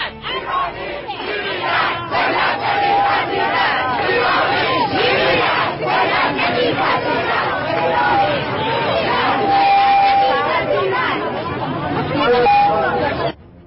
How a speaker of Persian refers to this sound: فعلا تهرانی ها در مترو و لب پنجره دارن مبارزه میکنن و امروز هم باز فریاد زدن.